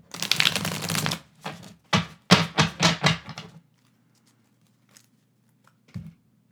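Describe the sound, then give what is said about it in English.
Shuffling of a tarot card deck: a long riffling burst, then a series of quick, crisp shuffles in rapid rhythm, followed by near silence with a faint soft tap near the end. “And I find that with shuffling, it just depends on how much you want to shuffle.”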